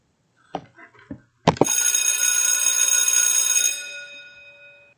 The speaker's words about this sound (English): All right, all right, all right. It is time for our chat. When you hear the bell, it's time for the chat.